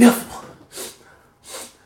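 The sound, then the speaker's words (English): A sharp, loud sneeze bursts out at the start, followed by two softer, breathy hissing bursts spaced evenly apart, with no talking. “Bless you, bro.”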